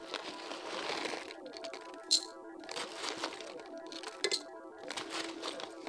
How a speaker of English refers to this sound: I'll just spoon some pellets into my glass.